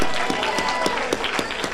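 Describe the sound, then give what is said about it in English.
An audience claps hands to praise God at a Saturday night church service, a dense, steady wash of many hands with sharper individual claps standing out, loud, with murmuring voices faintly mixed in. “Let's all clap our hands.”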